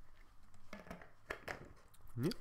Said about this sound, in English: I was clearly in the middle of a swig of water, and you're like, oh, I'm going to stop.